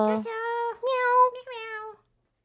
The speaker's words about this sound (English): And if I'm recapping it correctly, our cat is meowing. Meow. You want to open the door? Meow.